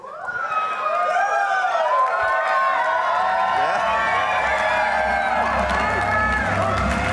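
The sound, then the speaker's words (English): A large crowd roars continuously, with overlapping shouts, whoops and cheering voices sustained at high volume for the whole span, a dense wall of excited noise that rises quickly at the start and never lets up. “In my mind, I have not heard anybody louder, even though there were some people that should have gotten louder applause than me that came here today because it was great.”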